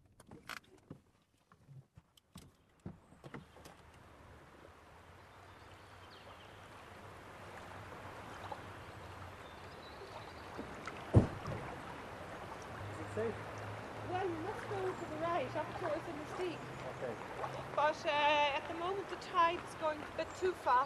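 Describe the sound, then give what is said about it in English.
River water laps and washes steadily at a boat slip on the River Nore just outside Inisteague, the sound growing fuller partway through, with scattered knocks and clicks and faint voices. “There's a boat slip down into the Nore just outside Inisteague.”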